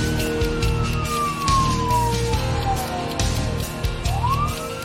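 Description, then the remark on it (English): A wailing siren of an ambulance and police glides slowly down in pitch, then sweeps back up, over a steady low rumble of traffic or engine noise. “She called the ambulance and the police.”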